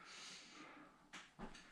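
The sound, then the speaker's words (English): Two sharp, abrupt hiccups sound about a quarter-second apart, following a stretch of soft, breathy hiss with no talking. “Oh no, that was a hiccup.”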